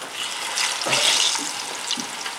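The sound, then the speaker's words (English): Plantains frying golden in hot oil, a steady crackle and sizzle with a few brief louder spits and pops, continuous and busy with no voices. “They're frying up nice and golden.”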